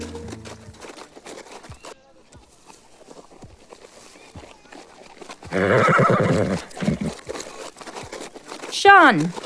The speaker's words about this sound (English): is that you on that horse?